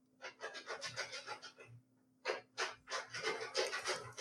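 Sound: dog panting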